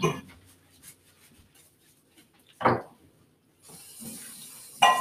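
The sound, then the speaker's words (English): Soft crackling pops from burger patties cooking in a covered pan, broken by a sharp clank at mid-clip, then a steadier hissing sizzle rising toward the end. “Still bubbling quite a bit, so I don't know.”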